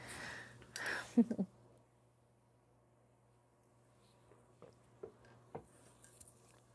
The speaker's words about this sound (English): Ooh. I almost knocked over my tea. Let me take a sip.